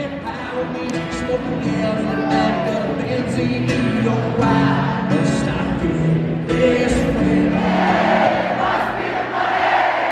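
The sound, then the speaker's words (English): A large concert crowd sings along in unison back to the performer, a loud, dense wash of many voices carrying a melody together, with cheering swelling near the end. “So that crowd singing back to me.”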